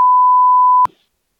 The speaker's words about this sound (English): No, you don't have to cut it out, but you're going to have to beep the name out. Of what? You just said the company.